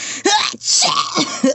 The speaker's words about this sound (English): Excuse me. That was more of a cough. I don't know what that was.